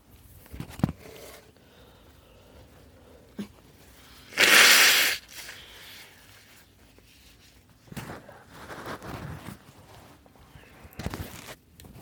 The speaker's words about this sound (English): Hold on, I'm going to blow my nose.